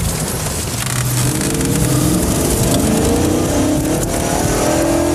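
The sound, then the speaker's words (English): A car engine revs hard and accelerates as the driver speeds off to chase a man on a bike, its pitch climbing steadily over several seconds. The roar is loud, with a rough, continuous drone and no voices. “Yeah, there that idiot is, and he opens it up. You hear this car just like...”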